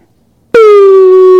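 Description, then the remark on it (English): After a brief silence, a loud, steady emergency broadcast alert tone cuts in abruptly and holds at one buzzy, harmonically rich pitch for about a second, with no voices. “So today, this message is going to serve as your emergency broadcast system announcement.”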